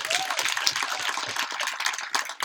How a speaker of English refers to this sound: It's a pleasure. Absolutely an honor. I think we're giving a big applause.